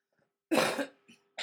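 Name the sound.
throat clearing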